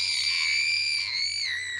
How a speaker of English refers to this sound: Well, don't scream into the microphone. And people are trying to listen.